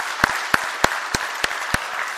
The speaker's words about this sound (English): Yes, let's clap for him.